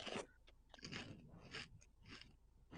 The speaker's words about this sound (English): what you munching on? Oh, I'm sorry. I forgot. No. I know you do it on purpose, but I just like to know what it is.